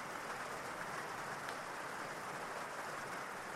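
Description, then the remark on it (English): Steady rainfall makes an even, hissing patter that holds at the same low level throughout, with no pauses and no voices. “And imagine that as you sit there, you can see someone out there in the distance, twirling and dancing in the rain and attempting to catch as many raindrops as they can on their tongue.”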